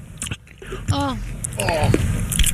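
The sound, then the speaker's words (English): Close-up chewing with irregular wet smacks and crunchy bites, loud and near the microphone, with a couple of short voiced murmurs or hums mixed in between the bites. “Let's listen in to what Scary chewing sounds like”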